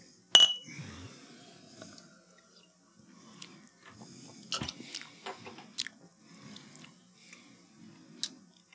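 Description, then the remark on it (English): A glass of cream soda clinks sharply against something, followed by soft slurping and sipping sounds with quiet swallows and small mouth noises, no talking. “I'm going to take a sip.”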